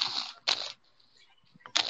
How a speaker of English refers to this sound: I feel like that's your phone typing. I feel like this man's playing with a fidget spinner. What? No. That's got to be your phone typing.